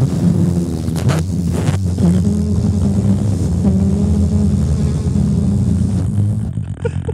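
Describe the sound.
Three voices, as a barbershop-style trio, blow loud, sustained raspberry fart noises together at high, middle and low pitches, forming a buzzing chord that holds for about six seconds before breaking off.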